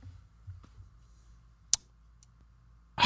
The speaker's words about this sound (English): That clicking was your Wi-Fi? That was a click of disgust in my fucking throat because I can't find the text.